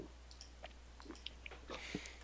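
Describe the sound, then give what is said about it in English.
A series of small, quiet mechanical clicks from the dial of a watch-like prop, the inverse of a dive watch, being clicked so its needle ticks down to out of oxygen, then reset and clicked again, irregularly spaced with a few sharper snaps and no voices. “So I'm clicking that and watching the needle tick down to out of oxygen and then resetting it and clicking it again.”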